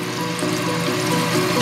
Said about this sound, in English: The first thing we do, we fill up a sink with hot water.